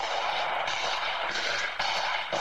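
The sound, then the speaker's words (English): Several harsh, booming gunshots, exchanged between people in two cars, crack out at uneven intervals over a constant wash of loud outdoor noise, sounding distorted, as captured by a Ring doorbell camera on a nearby home. “A Ring camera on a home nearby captured the sound of the gunshots.”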